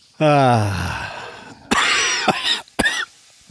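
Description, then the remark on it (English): A person coughs: a long, strained, voiced cough first, then a few sharp, hacking bursts after a short pause. Loud and raspy, with no talking. “Yeah, this cough won't go away.”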